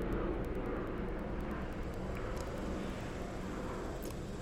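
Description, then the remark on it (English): A steady, broad rumbling roar of an airplane flying overhead, heard from a garage, fairly loud and continuous for the whole stretch, with no voices over it. “Hey, here's a plane flying over.”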